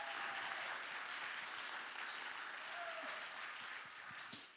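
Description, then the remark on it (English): A crowd applauds steadily, a dense wash of many hands clapping at an even level throughout, with a few cheers or whistles poking through near the end, as a young woman comes up to share about what God did at camp. “So can you give her a big round of applause as she comes up to share?”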